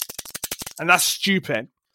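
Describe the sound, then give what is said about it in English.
A quick burst of about ten sharp keystrokes on a mechanical keyboard with clicky switches, in a steady rhythm and fairly loud, followed by a person speaking. “I like clicky sounds, clicky switches, but not for a keyboard, because you're going to type it next to a microphone.”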